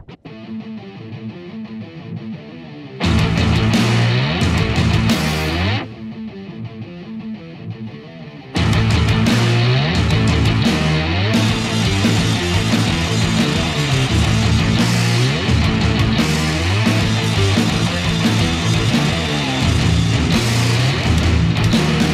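A loud, heavily distorted rock song with driving drums and dense guitars; it opens with a quieter intro, surges in, briefly drops out, then crashes back in at full volume without any talking.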